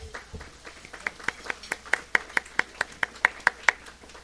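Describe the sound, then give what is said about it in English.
A short round of applause for Country Kitchen Catering after the food at a Southern Alberta Council on Public Affairs event, heard mostly as brisk, evenly spaced hand claps, roughly four or five per second, fairly quiet, with no one speaking. “Can we have a little round of applause for Country Kitchen Catering?”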